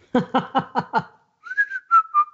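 A quick run of five rhythmic vocal bursts gives way to someone whistling a short tune, a clear steady tone sliding between a few notes for about a second.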